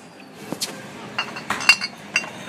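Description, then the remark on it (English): Small glass bottles for filling from organic oil and vinegar dispensers in a store clink against each other several times in quick, irregular succession: bright, ringing taps over a low background hum, with no one speaking. “And it looks like there's like little glass bottles that you can even put it in.”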